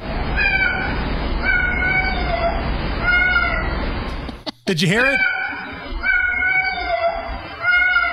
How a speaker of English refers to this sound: a woman was in the hospital for a few days, and while she was gone, her security camera filmed her cat meowing, and it sounds like the cat is saying, "Mom, where are you? Mom."